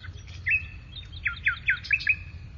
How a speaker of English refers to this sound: Birds sang in the trees.